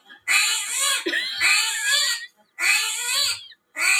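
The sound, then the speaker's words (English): A frightened screaming hairy armadillo, an armadillo with long hair, lets out loud, shrill squealing screams in four wavering bursts separated by brief pauses, with no talking over them. “It's a screaming hairy armadillo.”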